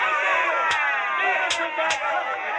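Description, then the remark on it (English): A dense, loud roar of many voices in the temple of Dagon surges without pause, the frenzied crowd noise filling the whole stretch, while three sharp cracks of the priests' scourges beating Samson cut through it at uneven intervals. “And the crowd roared with the frenzy, and the priests of Dagon beat him with scourges.”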